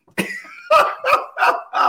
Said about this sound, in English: She got stuck on sweet and juicy, y'all. That made her cough.